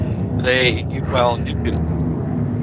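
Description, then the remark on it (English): A jet airliner roars low and close, a steady heavy rumble filling the whole recording, while voices speak briefly over the noise. “That's a jet. Might be a Boeing 737.”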